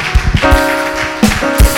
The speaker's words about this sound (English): we give the Lord a hand clap of praise? Amen.